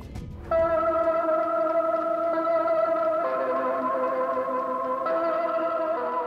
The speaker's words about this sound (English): It begins like every other morning in Pyongyang. This music is the city's alarm clock, played every day, beginning at 5 a.m., to commemorate the sacrifices of North Korea's leaders.